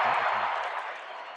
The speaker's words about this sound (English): Crowd chanting Rubio as he shoots the three free throws. First one's good.